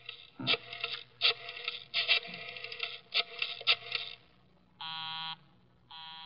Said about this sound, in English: Busy? He's probably left the phone off the hook, Inspector.